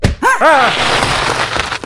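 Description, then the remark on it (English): A bucket of hot, extra-butter popcorn is knocked over and spills onto the floor in a dense, steady rattling rush. A short, wavering vocal yelp rises over the start of the spill. “You knocked my popcorn onto the floor, now I'm covered in butter.”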